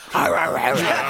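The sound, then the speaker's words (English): A person imitates a wolf howling, a single sustained wavering vocal howl lasting about a second, fairly loud, with the pitch sliding and quavering throughout. “Just howling.”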